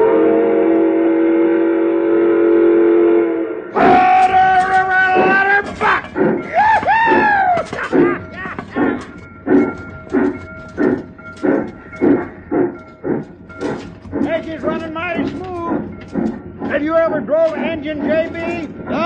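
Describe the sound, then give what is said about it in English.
A steam locomotive whistle blows a long, steady chord, then the engine chugs along in rapid, rhythmic chuffs, with faint tonal calls and clatter riding over the running train as it heads toward Laramie and approaches Dale Creek Bridge. “Hey, did you telegraph through to Laramie to make sure there ain't no other train in my way and coming at us?”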